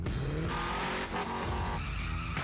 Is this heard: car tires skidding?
yes